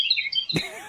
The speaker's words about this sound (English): Okay. We're at the point in the 450 class where we're just going to listen to birds.